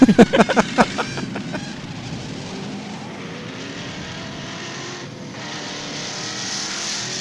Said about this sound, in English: So basically, a Red Dog 22 means we're going to take our bad hot rods and drive them down the street.